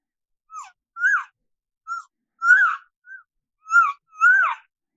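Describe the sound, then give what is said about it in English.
Imitated elk calf calls, part of a calf and cow call sequence laid out on a ridge line: about seven short, high, squeaky mews, some bending up then down, loosely grouped in pairs with brief silences between and no talking. “I lay it back with some calf sound.”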